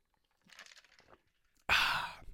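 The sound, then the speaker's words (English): A quiet sip of a drink with a few soft wet slurping sounds, followed by a sudden loud, breathy exhale or sigh right into the microphone. “I got to get a sip here.”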